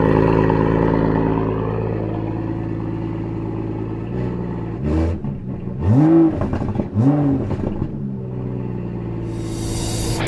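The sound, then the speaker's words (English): An Aston Martin DB11 AMR sports car's exhaust idles with a deep, steady drone, then barks through two or three sharp throttle blips in sport mode that rise and fall before settling back to idle. “And if we stick it onto sport, you just heard the exhaust, no change.”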